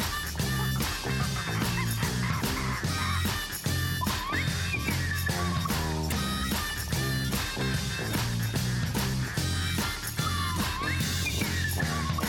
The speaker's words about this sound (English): Bird song.